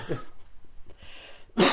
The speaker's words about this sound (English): And he's laughing, and he's coughing, and it's getting more and more violent. Like, his sickness is starting to get him again. All over again.